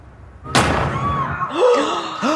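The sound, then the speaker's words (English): A single loud, sharp gunshot cracks out and rings off in a TV drama scene, followed by raised, urgent voices calling out over a lingering rumble. “Was that gunfire? Gunshot in the ends.”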